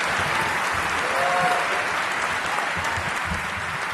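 A crowd at a Hall of Fame ceremony applauds the speaker's wife loudly and steadily for several seconds, a dense wash of many hands clapping at once with no break in the sound.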